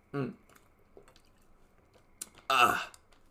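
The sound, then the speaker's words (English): Sips of water: a soft vocal sound, a few faint wet clicks, then a quick slurp and a louder, breathy swallow near the end. “Water.”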